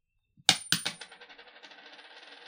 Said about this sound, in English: Oh, I don't have my dice here, but we only have two players today, so I'm going to flip a coin.